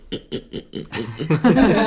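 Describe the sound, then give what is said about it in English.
A person imitates a pig with four quick, evenly spaced oinking snorts, then launches into a louder, more chaotic run of squealing, grunting vocal noise. “Do your pig noise.”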